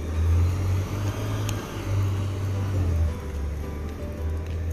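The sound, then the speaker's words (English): Road traffic rumbles past: a steady, loud low engine drone with a broad hiss of tyres and wind, swelling slightly as vehicles go by, with no voices. “Traffic.”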